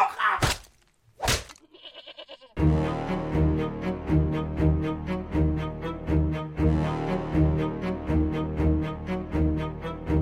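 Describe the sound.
Two heavy thuds land close together, followed by a short, wavering goat bleat; after a couple of seconds a steady, rhythmic music track starts and fills the rest.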